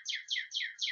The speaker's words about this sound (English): Yeah, that bird is getting on my fucking nerves.